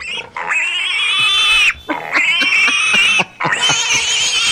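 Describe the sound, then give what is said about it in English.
A pig squeal sound effect: three loud squeals in quick succession, each shrill, drawn-out cry lasting over a second, clear with no talking. “High Partners is slapping more lipstick on their pig than Indeed, which is why High Partners receives the 2023 Little Piggy Award.”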